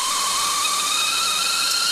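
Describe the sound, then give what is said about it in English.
A kettle whistles steadily with a loud, sustained high-pitched tone layered over a rushing hiss of steam, continuous with no voices. “calling the kettle whack. That's full on. I believe they're referring to this sound.”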